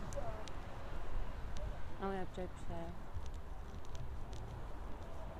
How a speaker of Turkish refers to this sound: Şu an hayvan gibi rüzgar esiyor ve yani zorlanıyor olabilirsin beni duymakta.